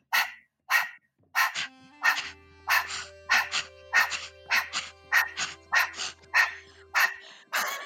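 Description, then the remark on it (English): A female dog makes a happy growl, a lively run of about a dozen short vocal bursts in a steady, fairly quick rhythm, with no one talking. “Can you hear her happy growl?”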